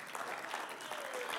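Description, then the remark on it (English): A crowd claps steadily for the worship team, a dense, even patter of many hands at a moderate level with no pause or talking over it. “I think we should give them a round of applause as well.”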